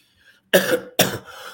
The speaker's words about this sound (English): Sorry for this cough this morning.